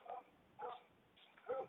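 A dog barks outdoors in an orchard three times at uneven intervals, faint, with a thin, slightly whiny tone and quiet background between the barks.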